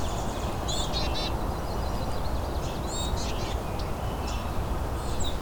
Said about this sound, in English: It sounds like a hermit thrush here.